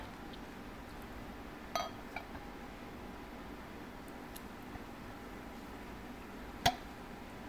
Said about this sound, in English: here's our 2019 Bigfoot Barley Wine Style Ale. And we're going to open it up here. Get some nice sound effects.